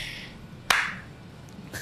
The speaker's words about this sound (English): Well, now it's going to be double clap. Well, now you got two points of to sync it up.